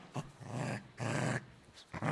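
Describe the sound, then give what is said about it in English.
A dog growls in three rough, rumbling bursts, each lasting under a second with short pauses between, loud and harsh with no voices present. “Could you turn down that dog, please?”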